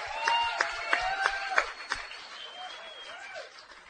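A crowd cheering and applauding, with a steady wash of clapping, sharp louder claps in the first two seconds, and shrill whoops rising above the noise before it gradually fades.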